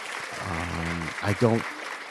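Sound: applause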